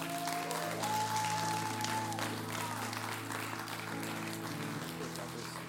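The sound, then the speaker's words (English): An audience applauds steadily for several seconds, a dense, even wash of clapping that holds at the same loudness throughout, with sustained organ-like chords humming underneath. “Come on, give him another round of applause.”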